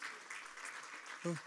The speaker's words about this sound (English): Am I missing anybody? Let's give everybody else a hand clap of praise today. Who am I missing?